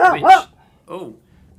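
A dog, upset by thunder and lightning, barks: two quick, yelping barks in succession, a brief pause, then one softer bark, with quiet background in between.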